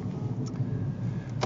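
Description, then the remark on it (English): Low, steady rumble from inside a car creeping through stop-and-go traffic on a commute home from work, with a couple of faint clicks or ticks near the start and end. “And I'm going to talk to y'all while we're driving. That's the format of this here. I'm stuck in traffic”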